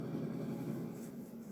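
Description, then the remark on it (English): A helicopter drones steadily as it flies away, a low, fairly quiet mechanical rumble that holds almost level and eases off slightly near the end. No voices are heard. “Helicopter flies away.”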